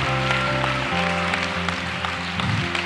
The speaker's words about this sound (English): Who healed you? Jesus healed. Why don't we give Jesus a clap?